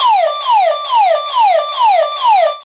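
A burglar alarm, set off as the unlocked door of a house is pushed open, wails loudly and alone, a shrill electronic tone sweeping downward over and over in quick, even cycles, about two per second, then cutting off abruptly.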